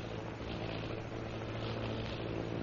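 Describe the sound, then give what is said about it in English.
A steady, droning airplane engine hums continuously at an even loudness, with a deep tonal rumble and broad roar and no one talking over it. “Sounding like airplane. Airplane?”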